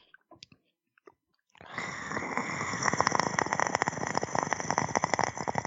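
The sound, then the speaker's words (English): A voice imitates a raspy clicking sound: a few isolated sharp mouth clicks, then a loud, sustained gravelly rasp full of rapid crackling clicks that runs steadily for about four seconds. “So he obviously can do the clicking, but it's the raspy.”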